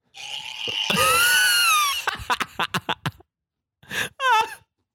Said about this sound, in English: So if you're watching the video, I scared the shit out of our tour manager by doing this scream. I went. And I walked like this.